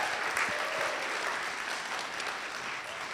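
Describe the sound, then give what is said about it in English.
A crowd applauds steadily for about three seconds, a dense wash of many hands clapping at an even level with no voices standing out. “Hey, would you guys just give them a round of applause?”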